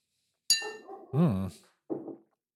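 A single bright clink of glasses touching in a toast over rye whiskey, with a short high ring that fades quickly, followed by a couple of brief murmured vocal sounds.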